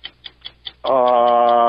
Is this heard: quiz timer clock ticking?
yes